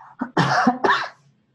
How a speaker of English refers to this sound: No coughing on the show. I know there's something in the air out here.